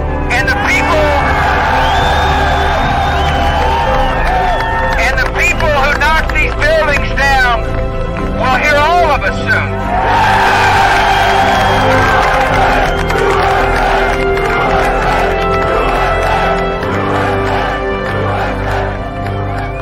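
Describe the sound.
A large crowd cheers and shouts loudly throughout, a dense, continuous roar with individual voices whooping and bellowing in rising bursts near the middle before settling back into steady cheering.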